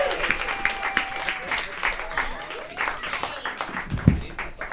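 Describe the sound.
A crowd applauds steadily for several seconds as a comedian comes to the stage, a dense, even patter of many hands clapping, with a few whoops and voices rising faintly within it.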